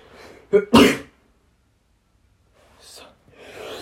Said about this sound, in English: Sorry, I had to sneeze. Damn, I feel so bad.